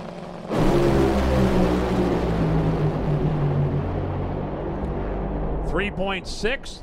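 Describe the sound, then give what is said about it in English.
A thunderous, crackling Top Fuel dragster engine roar bursts in abruptly and blasts at full volume for about five seconds, overwhelming, as Brittany Force's car makes a run down the drag strip, before a voice starts speaking over its tail end. “So let's listen to that Brittany Force run, and then we'll be right back into it with Funny Car final session.”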